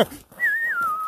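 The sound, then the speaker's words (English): A person whistles a Western movie theme tune: one clear, sustained note that rises and then slowly slides downward in pitch, heard alone against quiet background noise. “Do that whistle”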